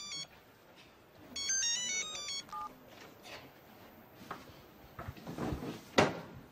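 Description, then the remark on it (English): A short melodic phone ringtone trills a few bright electronic notes near the start, then gives way to clattering and knocking, like drawers or cupboard doors, ending in a sharp bang. “I know you know it is a phone, but it is ringing, so I must...”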